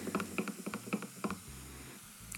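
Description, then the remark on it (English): Faint fizzing of an effervescent lemon-flavoured bowel prep laxative drink being mixed from a sachet: soft crackling pops and a thin steady hiss, irregular bursts that thin out toward the end, with no talking. “I don't know if you can hear the fizzing.”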